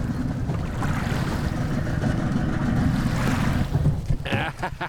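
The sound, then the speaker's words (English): A boat engine churns in reverse to counter drift after cutting speed on approach, a steady low rumble mixed with splashing water and wind, fairly loud, surging in short bursts near the end. “Cut your speed around 2 feet towards impact, then reverse to counter the drift.”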